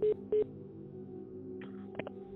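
Two quick telephone dialing tones beep in succession as a phone call is placed, followed by a steady, low line hum with a couple of faint clicks near the end; no one speaks.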